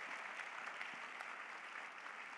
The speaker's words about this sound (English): Can you clap your hands unto Jesus for this great miracle?